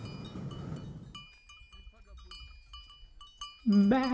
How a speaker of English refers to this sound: Bah. That's the shepherd herding his sheep across. Bah.